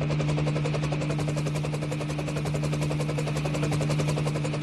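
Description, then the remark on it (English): Loud Sikorsky UH-60A Black Hawk helicopter rotor noise: a steady, rapid thumping of blades over a constant engine whine and low hum, continuous throughout with no voices. “Micah piloted the Sikorsky UH-60A Blackhawk.”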